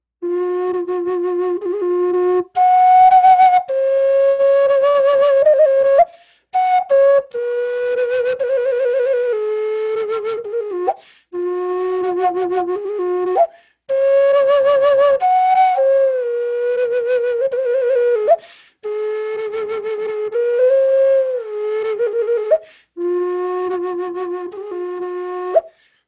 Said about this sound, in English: This is a replica of his style flutes. He always made them fashioned out of a duck head. And his flutes don't have the warble, but they have this amazing sound that fills a room.